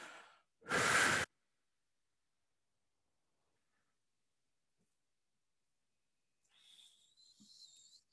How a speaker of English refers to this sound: And then you're just gonna get a full belly breath and then really see what that feels like. If you feel any bit more centered, a bit more present.